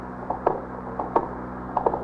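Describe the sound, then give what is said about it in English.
An apartment building elevator mechanism running as the elevator goes up: a steady low mechanical hum with pairs of soft clanks and clicks repeating at a regular rhythm, roughly every seven tenths of a second, and no voices. “The elevator's back there, Captain.”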